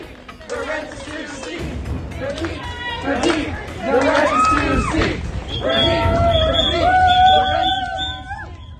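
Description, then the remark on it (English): Protesting students shout and chant together loudly and agitatedly while clapping, with sustained shrill whistles blown over the noise in the second half, continuous throughout, just outside an event. “These students remain on stage for nearly 15 minutes before continuing to chant, clap, and blow whistles from just outside the event.”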